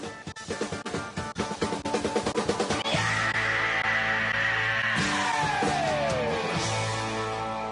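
Loud rock music with pounding drums and guitar, then a rock singer's long, sustained scream held over the band before it slides downward in pitch.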